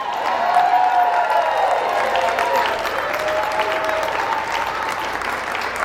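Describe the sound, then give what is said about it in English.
Loud, sustained applause from a large crowd giving a standing ovation, dense continuous clapping with scattered cheers and whoops rising over it, holding steady for several seconds. “Give these people a big hand. A standing big hand.”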